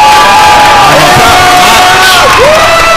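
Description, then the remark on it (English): A wrestling crowd roars loudly and without pause, cheering and shouting, with scattered individual yells and whoops rising over the dense wall of noise. “I feel like a lot of people in the crowd are a bit jealous.”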